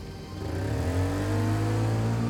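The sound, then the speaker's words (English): A car engine revs up and accelerates hard as the driver speeds off into the night, its droning pitch climbing steadily as it pulls away. Loud, with no voices over it. “He put the car in drive, pushed Marion out of the passenger side door, and sped off into the night.”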